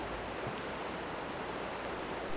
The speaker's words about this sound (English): Water is starting to flow down rapidly, gaining speed as the hole into the Feywild opens up wider for the flow of water. And all of a sudden, the water freezes in its motion.